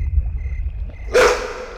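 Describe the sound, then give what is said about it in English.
A single loud, sharp dog-like bark from a wolf bursts out, fading quickly, after a stretch of low rumbling background noise. “shift out of wolf form, you idiot. You're scaring her.”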